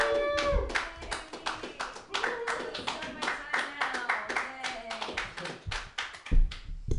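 A comedy show audience claps steadily for several seconds, a dense patter of many hands with whoops and cheering voices rising over it, the applause staying fairly loud before thinning at the end.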